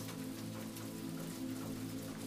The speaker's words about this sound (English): Lightning illuminates the horizon, distant enough that the sound of thunder is buried by the staccato music of rain.